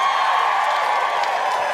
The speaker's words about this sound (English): Thank you. Thank you for applauding this capitalistic enterprise.